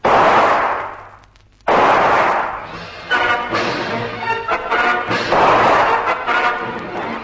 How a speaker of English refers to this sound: Von Stahlheim whips his gun out and blazes into the mangroves.